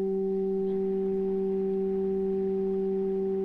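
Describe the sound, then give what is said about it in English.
A steady, pure 192 hertz sine tone, a solfeggio healing frequency, hums continuously at an even level, joined by two fainter higher pure tones at 384 and 768 hertz stacked above it, with no voices or other sounds. “192 hertz.”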